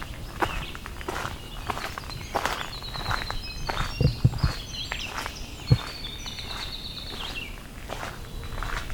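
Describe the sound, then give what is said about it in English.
A winter wren delivers its long, high, tumbling song for several seconds, while footsteps crunch steadily and loudly. “It's our winter wren with its really long song.”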